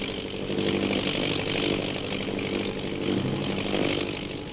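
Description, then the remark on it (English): A plane's engine drones steadily as it comes in to land, a loud, buzzing roar with a low harmonic hum that holds constant throughout, with no voices. “Say, that plane's coming down.”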